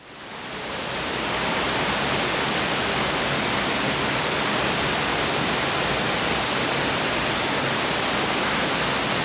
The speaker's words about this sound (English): The roar of the waterfall is so loud, and you know, to be able to hear yourself, you'd have to be yelling.